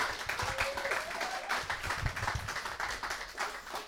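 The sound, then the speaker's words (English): A church crowd applauds with dense, steady clapping that fills the whole few seconds, with occasional cheers mixed into the rush of hands, giving a big cheer of thanks. “Can we give them a big cheer for that?”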